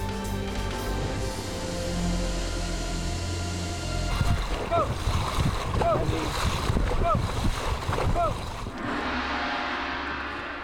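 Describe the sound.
Oars dig into water in a steady, rhythmic splash as a dragon boat moves along in a race at a water sports training base in the suburbs of Shanghai, with loud bursts of paddling in the middle and a constant hum of background noise and voices.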